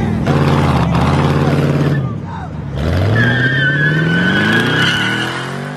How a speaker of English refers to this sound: Like a scene out of Fast and Furious, the video shows traffic stopped on I-94 in Detroit while the driver of a Chevy Camaro pulls out and proceeds to do donuts in the middle of the interstate.